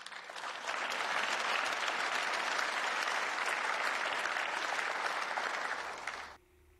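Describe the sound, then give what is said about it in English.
Sustained applause in the European Parliament for Yulia Navalnaya, wife of late Russian opposition leader Alexei Navalny, a dense, even wash of clapping from a large audience that rises quickly, holds steady for about six seconds, then cuts off abruptly. “Applause for the wife of late Russian opposition leader Alexei Navalny.”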